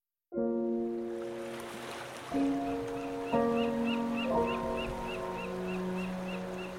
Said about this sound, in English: I'm in the famous French Quarter in New Orleans, standing on the shore of the Mississippi River